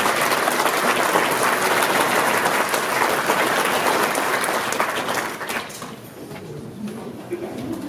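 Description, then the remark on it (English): A crowd at a Convention of States event applauds Senator Santorum loudly, a dense, steady clatter of many hands clapping that holds strong for about five seconds, then thins and fades out toward the end. “So big round of applause for Senator Santorum.”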